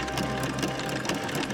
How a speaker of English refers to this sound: Von Lloyd steps up to a multi-knob lever-laden machine and begins to fiddle about with it. The immense clock-like wheels begin to rotate and interconnect with the others.